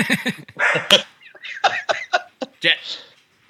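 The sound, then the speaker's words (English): A puppy named Jet gives a run of short, high yips, mixed in with people talking and a bit of laughter. “So, I mean, like, how's it, puppy?”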